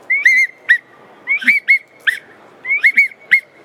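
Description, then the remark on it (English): A widgeon duck whistle, a duck-hunting call, is blown in three quick, clear bursts of high, warbling whistled notes, each burst rising and dipping, loud with short pauses between. “If you're in a big pintail widgeon feed, you know, we'll stick with a mallard call, but also another key tool is a whistle, right? A widgeon whistle.”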